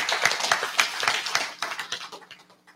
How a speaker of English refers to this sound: Amen. Give God a clap offering tonight.